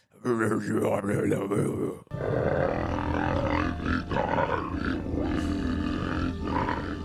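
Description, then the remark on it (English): A voice imitates a weird, guttural growling snore, loud, with rough rumbling roars rising and falling for several seconds after a brief sharp break. “When Little Nicky's asleep, he has that weird like snoring thing where he's like”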